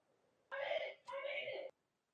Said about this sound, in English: Can y'all hear the kids screaming in the background? Oh, that was on your end.